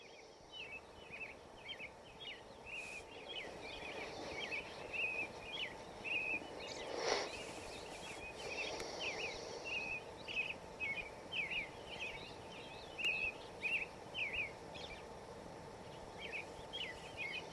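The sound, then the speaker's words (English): Robins singing outdoors, a steady stream of bright, repeated chirping phrases carrying on throughout, over a low background hum with no voices. “The Robins are giving most of the Dharma talk tonight.”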